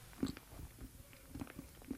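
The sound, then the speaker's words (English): Chewing chocolate with a few sharp jaw clicks, roughly three distinct pops spaced unevenly over soft, wet mastication sounds; quiet overall, no talking. “It's because my jaw clicks.”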